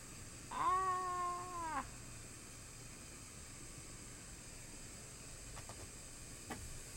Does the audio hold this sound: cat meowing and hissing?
yes